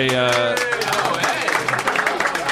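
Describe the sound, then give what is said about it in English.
A brief tonal note opens, then a crowd breaks into steady applause, a dense patter of many hands clapping that continues to the end. “Well, hold your applause, because this is a segment of the show called Because I Don't Go on Reddit Anymore, What the Fuck is Going on Reddit?”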